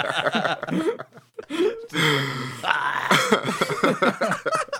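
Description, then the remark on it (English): Someone coughs and clears their throat right into a microphone after swallowing wrong, in a run of harsh, raspy bursts, with strained, choking vocal noises between them. “Swallowed wrong.”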